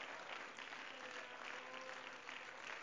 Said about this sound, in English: Come on, let's clap our hands and give praise to the Lord.